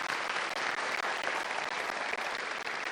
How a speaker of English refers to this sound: And let's just go ahead and do more clapping. Can you clap for all of the people that participated up here this morning? There were some new people.